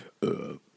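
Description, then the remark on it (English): A single loud burp, a short throaty rumble lasting about a third of a second, starting abruptly and cutting off just as fast, with no talking around it. “I will burp occasionally.”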